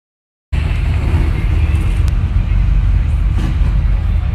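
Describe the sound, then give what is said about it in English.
Loud, deep rumble of several vehicle engines revving together as vehicles ringed around a building in Leominster get ready to start a Trump Shiva rally, a dense steady roar that starts abruptly after half a second of silence and continues without a break. “Everybody's revving up. We're about to start. These vehicles are completely ringed around this building.”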